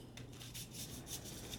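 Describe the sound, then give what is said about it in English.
A deck of playing cards being shuffled: a run of soft, papery swishes and rubs repeating in a loose, uneven rhythm, fairly quiet, with no one talking. “you have to put that card back in the deck when you shuffle it again”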